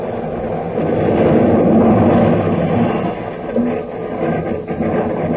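A train wreck explosion, with a spurt of flame coming through the trees: a loud, continuous roaring rumble that swells early, holds steady for several seconds, then wavers slightly near the end. No one speaks.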